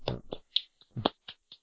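A quick, uneven burst of about seven or eight hand claps, sharp and crisp, a couple fuller and louder than the rest, with no talking.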